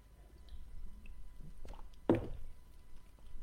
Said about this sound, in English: So, take a sip of water first.